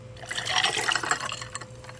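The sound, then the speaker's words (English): Rum pours steadily into a glass for about two seconds, a continuous splashing gurgle with faint rising fill tones, no voices present. “That sounded like water. No, honestly, it was rum.”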